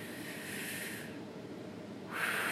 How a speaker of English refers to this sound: I'll do a little practice right now for myself. Go ahead. Sit up in a chair. If you're in a car driving, just kind of think, contemplate. I'm just going to take a deep breath.